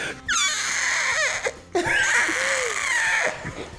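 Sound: voice imitating an elephant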